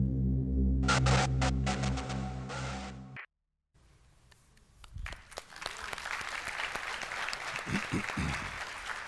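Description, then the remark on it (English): A steady low humming tone with crackly bursts cuts off into a brief silence, then applause from a church audience swells up and continues as dense, sustained clapping to the end. “It's not the message so much that we applaud, but the giftedness, the creativity of bringing us the dark side of why we so desperately need what Jesus did for us on the cross.”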